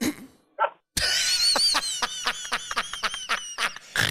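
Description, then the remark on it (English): A person on a farm lets out a loud horse-summoning call, a warbling, wavering cry broken into rapid pulses that lasts about three seconds after a short vocal sound, used to bring horses up from the back paddocks for a feed. “So I've gotten pretty good at a horse call, you know, to be able to get the horses down up from the back paddocks, you know, so they come up for a feed.”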